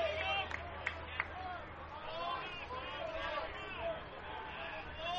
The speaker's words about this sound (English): Crowd trickling in just a little bit here at Warner Field at AES Ohio Stadium.